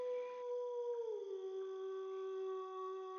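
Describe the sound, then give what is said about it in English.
A wolf howls from far away, heard at a campsite, one long sustained note that dips slightly partway through and then holds steady, faint and drawn out with no voices around it. “Mostly you hear them since their howls travel so far.”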